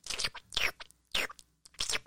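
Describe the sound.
Someone imitates wet slurping noises with their mouth, four short smacking bursts in an uneven rhythm, fairly loud, with no talking.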